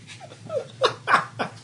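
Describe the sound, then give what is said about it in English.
A dog pants by a bag, a few quick breathy huffs in a loose rhythm, with a soft whine slipping in before them. No one speaks. “And you quit bathing it in a male dog.”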